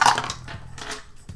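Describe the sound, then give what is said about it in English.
Dice clatter across a hard tabletop in a quick burst of sharp, rattling knocks that tumble and fade over about a second, with a few scattered clicks as they settle. “These dice are busted!”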